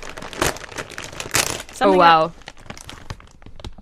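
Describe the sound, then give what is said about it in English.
Crinkly Kettle Brand potato chip bags being torn open at the same time, with sharp, scattered bursts of rustling plastic throughout and a short vocal exclamation in the middle. “How you open these bags.”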